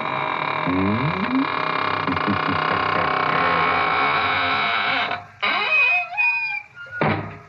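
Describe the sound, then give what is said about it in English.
A door creaks shut with a long, wavering squeal that bends up and down in pitch, ending in a soft thud, after a stretch of dense, sustained droning tones. “And now it's time to close the squeaking door, so good night.”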